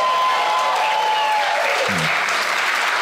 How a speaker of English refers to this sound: Nothing like the artificially generated applause. It's my favorite.